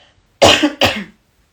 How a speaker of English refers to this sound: I'll clear my throat.